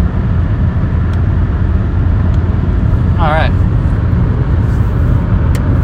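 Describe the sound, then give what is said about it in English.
Steady, loud road rumble from a car climbing hills along a highway with a 55 speed limit, heard from inside, with a constant low engine drone and a brief spoken word partway through. “Yeah, speed limit's 55, let's try to take advantage of that, shall we? I know we're climbing hills, but dadgum.”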